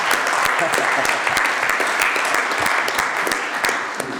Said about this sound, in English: Applause.